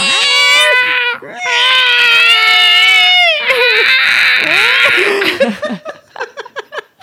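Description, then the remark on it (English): Cats yowl loudly during mating, long wavering wails that rise and fall, breaking into a string of short, choppy cries at the end. “Fuck, I do like listening to cats get fucked.”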